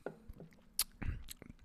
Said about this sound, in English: I'm going to take a sip. I'm going to take a sip out of the can because there's a bunch of foam.